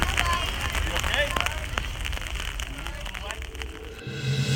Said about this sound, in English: Oh my word. Raining again.